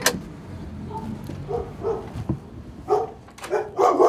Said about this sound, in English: Oh, yes, we wanted dogs. We've got dogs.